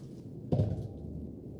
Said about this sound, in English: You with your metal dice. So we need a dice tray. I love metal dice.